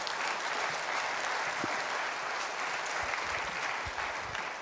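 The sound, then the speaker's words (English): A church audience applauds the church's youth program steadily, a dense wash of many hands clapping at even loudness for several seconds, tapering slightly at the very end, with no voices over it. “You can clap for that.”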